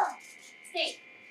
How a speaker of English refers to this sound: If you're hearing that dog, it is little buddy Morrison. Come on, let's go. Who's a chihuahua.